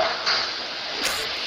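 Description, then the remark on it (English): Thin aluminum crackles steadily like a crumpled tin can, a dense, bright rustle of tiny snaps with one sharper pop about two-thirds through; no one speaks. “And so that's what a thin aluminum sounds like when it crackles.”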